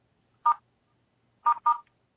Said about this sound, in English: Someone just left a voicemail with them. Beep, beep, beep, beep, beep, beep. Was it code?